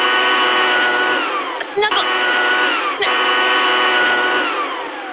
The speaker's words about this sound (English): Drown her out with a 200-mile-per-hour cordless leaf blower.